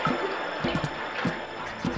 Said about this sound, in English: I waded through the water, and tears soon flooded my cheeks.